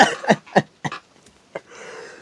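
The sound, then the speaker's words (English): A fairly loud laughing cough: a quick series of short, sharp bursts that trail off, ending in a long breathy exhale. “I laugh-coughed. That's how creepy it was.”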